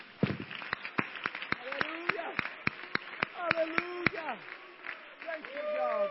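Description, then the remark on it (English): A crowd claps hands together in a steady, even rhythm for several seconds, sharp, while voices call and sing out over the beat before the clapping fades. “Come on, let's clap our hands right now.”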